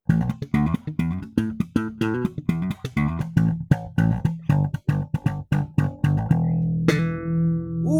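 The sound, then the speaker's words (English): Funky slap bass riff played live in a studio, with sharp, percussive popped and thumbed notes in a quick syncopated rhythm, ending on a sustained, ringing note that bends in pitch. No one speaks over it. “Let's move along to some bass slapping.”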